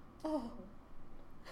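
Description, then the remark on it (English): A single short, nasal dog snore with a slight whistling, falling tone, followed by quiet background noise and a faint breath at the end. “He's snoring.”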